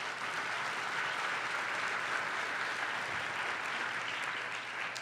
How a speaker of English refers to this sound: Yes, that's worthy of applause.